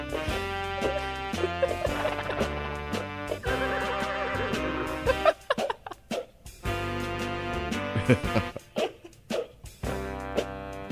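A horse's whinny rises out of a busy instrumental piece with an accordion, sitting amid layered sustained notes and choppy accents, loud, with no voices.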